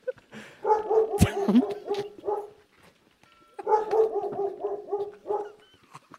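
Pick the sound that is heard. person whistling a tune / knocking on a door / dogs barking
dogs barking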